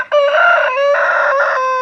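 A rooster crows loudly on a small farm in Washington State with cows, goats and chickens, one long, strained cock-a-doodle-doo that holds steady for nearly two seconds with a few wavering breaks, with no talking.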